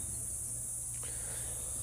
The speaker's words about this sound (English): abdomen probably works as a tambourine, almost like a cricket. It just freaking flies in my face.